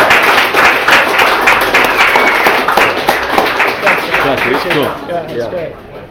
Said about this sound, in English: Round of applause for our champion here.